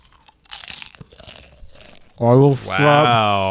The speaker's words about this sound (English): Oh, you're recording right now. So everybody can hear my nom. You're chewing? Yeah. I'm sure that's going to be an amazing audio experience for anybody.